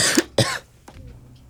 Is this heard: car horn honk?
no